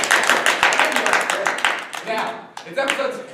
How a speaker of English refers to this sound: Clap up. Clap it up for him.